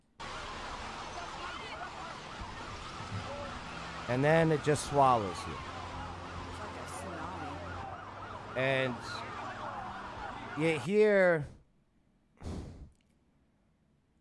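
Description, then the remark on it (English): Emergency vehicle sirens wail and yelp in short bursts over a steady rumble of street noise, with a person talking briefly in between. “you hear those sirens, right?”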